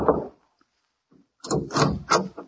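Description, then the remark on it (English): Knocking on an apartment door: one thump, a brief pause, then a quick series of three or four firm, loud raps, with no voices. “I knocked on the apartment door.”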